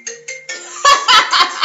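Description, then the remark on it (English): A phone set to Do Not Disturb plays a clear notification chime: two quick electronic tones, then a longer held note, before loud, harsh bursts of noise take over. “You're actively using the phone on Do Not, while it's on Do Not Disturb.”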